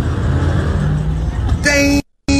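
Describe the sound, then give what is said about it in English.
Street traffic rumbles steadily with a busy wash of engine noise, then a loud, sustained car horn blares twice, cut by a brief gap of silence. “But basically it's saying, my goodness, people, look at the thugs and the thuglings as they run into traffic.”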